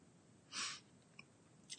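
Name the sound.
sneeze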